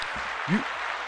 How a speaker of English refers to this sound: Listen, I got to give a round of applause. Good job, Cooper.